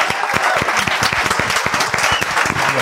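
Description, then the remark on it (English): A crowd applauds steadily, many hands clapping in a dense, continuous patter that stays loud and even throughout, with no voices standing out. “Give them both a round of applause.”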